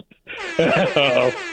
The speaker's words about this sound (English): There it is. Oh, there's the air horns that I missed so much. I had it too far away. I had to actually reach across my control board to grab that, so it was a little late. But anyway, apparently it was air horn worthy.